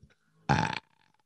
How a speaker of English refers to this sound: Anyway, that was a nice big burp. We're going to end it on that one.